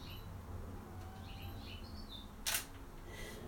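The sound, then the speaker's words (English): Short high bursts of chirping from a male red finch in a tree, where its brown mate also sits, flutter over a low outdoor hum, and a single sharp camera shutter click cuts in partway through. “Mommy and Daddy are in the tree, and it's a little red finch.”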